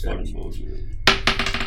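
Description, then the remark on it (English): Dice are rolled onto a hard surface in a dice game: a sharp first impact, then a quick run of smaller rattling bounces as they tumble to a stop, after a moment of quiet background noise. “Will you roll for your pack of lighters?”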